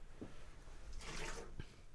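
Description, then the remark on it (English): Water splashes and swishes inside a glass in short bursts, a brief rinse with a couple of soft drips, fairly quiet with no talking, as a glass is rinsed out during a beer tasting. “Let me finish up this 450 North. That was quite tasty. Just rinsing out.”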